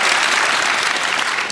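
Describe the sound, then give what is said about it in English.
An audience claps steadily, a dense wash of many hands, loud and sustained without pause for the whole moment. “I want to thank our audience who just clapped, so I won't make you do it again.”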